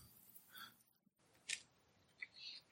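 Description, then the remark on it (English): Soft, irregular clicking of keys on a keyboard, quiet, with short bursts of taps separated by brief pauses and no voices. “What are you typing in there?”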